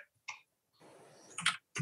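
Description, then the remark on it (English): Loud computer keyboard typing out an answer: a few sharp, irregularly spaced key clacks with a quick run of softer rattling keystrokes between them, with no talking. “Sorry, I know you can all hear my obnoxiously loud keyboard here, but I'm just typing an answer to Aaron.”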